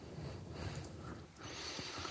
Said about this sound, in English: Hey, look, it's just a breathing nerd. It's a mouth-breathing nerd, yep.